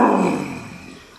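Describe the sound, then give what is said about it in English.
A lion roars once in anger, a deep, rough growl that starts loud and fades steadily over about a second, with no voices. “He roared with anger when he discovered that Monkey had tied his tail to a tree.”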